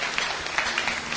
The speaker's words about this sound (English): Can you clap for this old woman? Powerful.